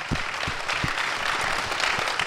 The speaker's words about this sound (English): We're so glad to have you all from A Better Way Ministries. Go ahead and give yourselves a round of applause.